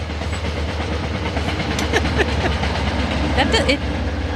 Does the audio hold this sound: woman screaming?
no